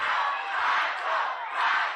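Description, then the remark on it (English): A large concert crowd yells the lead singer's name together after he was hit in the head with a guitar, a dense wall of shouting voices that stays loud throughout and swells in two surging waves. “And they think if they yell Michael a lot loud enough, the concussion will go away.”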